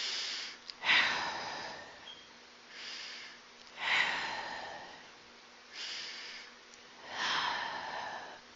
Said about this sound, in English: Those are deep breaths, right? And this is part of meditation as well. So focus on breathing out as slowly as possible until the lungs are completely empty.